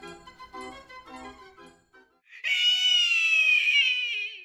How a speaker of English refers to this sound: The woman's eyes bulge in her blanched face. She stares at you. Her hysterical shriek is like a door slamming out the laughter.